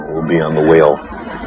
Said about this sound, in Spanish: A menudo, todas las ballenas del grupo cantan la misma canción al unísono. Por consenso mutuo, todas colaboran en la composición de la canción y van cambiando el tema gradualmente.